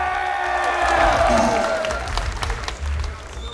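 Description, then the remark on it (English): A live crowd claps and cheers loudly for a contestant at a game challenge, with shouts and whoops rising over dense, continuous applause that carries on steadily for a few seconds before easing slightly. “And, let's give him a round of applause. Make some noise right now!”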